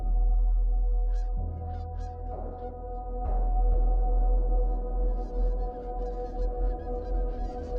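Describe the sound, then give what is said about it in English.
Geese honk repeatedly in scattered, overlapping calls, growing busier toward the end, over a steady low rumble in the background. “On the morning of the 8th day, my geese finally reached their destination.”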